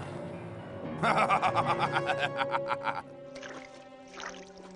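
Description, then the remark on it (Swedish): A quick run of splashing footsteps as a man steps down into a stream, about ten rhythmic slaps over two seconds, then softer sloshing as the movement settles. “Han kliver ner i bäcken!”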